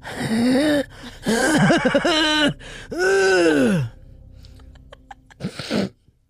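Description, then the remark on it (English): A voice imitates the deep, heavy breathing of a strange man standing and watching: three long, loud, groaning breaths, then faint clicks and one short final gasp. “All you could hear was his deep breathing.”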